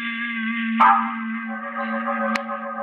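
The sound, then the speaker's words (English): A doorbell rings continuously, a steady metallic tone held throughout with a couple of sharp clicks partway through. The ringing is fairly loud, with no one talking. “Suddenly I realized that the doorbell was ringing again.”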